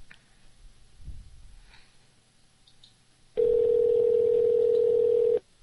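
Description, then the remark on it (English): A phone ringing tone sounds once, a steady, loud electronic buzz lasting about two seconds after a few seconds of quiet background noise with a soft thump. “A lot of rings.”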